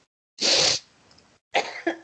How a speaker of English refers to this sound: Sorry, I was taking a sip of a drink. Anyway, I shouldn't have done that because now I have to cough.